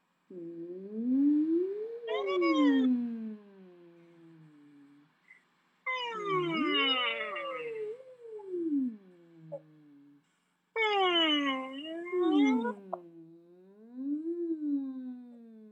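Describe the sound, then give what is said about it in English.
A single voice hums with lips together and teeth apart while circling the head, in three separate phrases gliding smoothly up and down in pitch through its range, with short silent gaps between them, steady in loudness. “Let's explore a little hum on different pitches as we circle our head around.”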